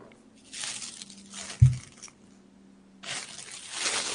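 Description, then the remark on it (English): A single sharp, thudding pop of a helium balloon bursting, set between stretches of airy hissing and rustling noise, with no one speaking. “RIP to the balloon.”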